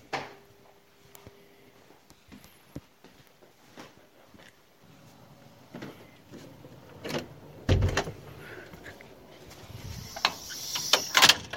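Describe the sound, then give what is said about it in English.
Quiet footsteps and soft household creaks as a person quietly walks through their house while everyone else is asleep, followed by the front door latch clicking and the door swinging open with a few louder knocks and rattles near the end. “I'm just going to quietly walk through my house. Just got to be quiet when I walk through the house because everyone else is asleep till we get to the front door.”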